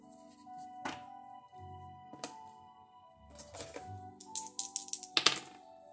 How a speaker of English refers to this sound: Seven. I can't even make it up. I just did a dice roll. Seven is the zodiac Libra.